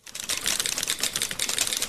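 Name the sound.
typewriter typing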